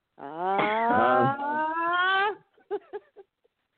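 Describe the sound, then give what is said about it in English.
A person lets out a loud, drawn-out growling cry lasting about two seconds, with a rising and falling pitch, followed by a few short, clipped vocal bursts. “Growl and everything.”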